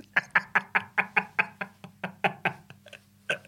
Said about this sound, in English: Just him headbutting a small mirror.